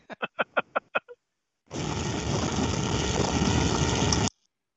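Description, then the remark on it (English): Six quick rhythmic pulses, then a loud, dense buzzing drone of a swarm of bees attacking a man, holding steady for about two and a half seconds before cutting off abruptly. “A swarm of bees that are attacking him.”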